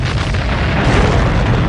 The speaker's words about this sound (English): And he went into detail that the explosions were so big, a wall of earth swallowed up our secondary assault wave.